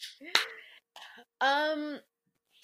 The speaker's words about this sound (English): So clap for the kings. Awesome.